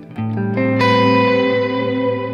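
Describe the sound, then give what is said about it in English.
Electric guitar notes played through a dual delay set up in a Strymon Timeline pedal, a few plucked tones entering in quick succession and stacking into a sustained, shimmering chord as repeats smear together, steady and fairly loud with no voices. “And so this is just it's a dual delay I've got set up in a Strymon timeline.”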